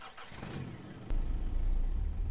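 A car engine turns over and catches with a sudden low roar about halfway through, then keeps rumbling loudly, rising slightly as if revved.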